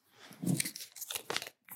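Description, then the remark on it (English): A sheet of paper is picked up and unfolded, with crisp crinkling and rustling bursts over a couple of seconds, a brief pause, then a final crackle. “Take another piece of paper, please.”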